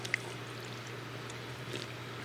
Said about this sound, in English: And definitely, if you want to grab me a glass, we should definitely pour, just so you can see the color of it as well. Yeah. It is super beautiful. Look at that. Yeah. Look at that color.